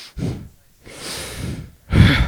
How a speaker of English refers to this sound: Did you hear this motherfucking breathing. Guy breathing?